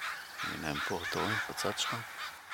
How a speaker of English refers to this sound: There's one crow that when I go out of my house, he's there, he's calling the others. When I finish work, I come home, he's there. When I go early, he's there.